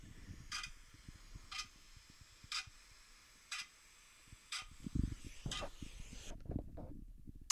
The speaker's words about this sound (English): Ticking clock. Oh my God, yeah. We should put that one on for now while you look for cha-ching, could ya?